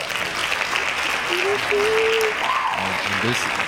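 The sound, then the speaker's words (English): Steady, dense applause from a crowd, a loud continuous wash of many hands clapping, with brief voices and a few tonal whoops rising over it near the end. “Hand claps.”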